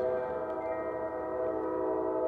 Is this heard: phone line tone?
no